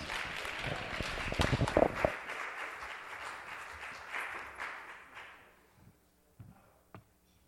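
A crowd applauds loudly and densely, the clapping gradually thinning and fading out over several seconds until only a few scattered claps remain near the end.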